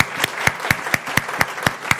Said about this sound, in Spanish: If you're going to give a clap to the Lord, si give le va a dar un aplauso, Señor, hallelujah. Fuerte. Hallelujah.